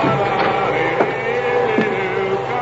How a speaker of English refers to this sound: Will you hurry along now with the vacuum, please?